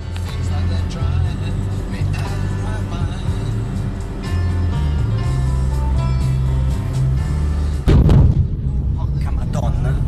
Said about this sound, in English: Now, There was something we missed, though. You got to listen carefully. Listen to the explosion again. Really, and listen really carefully.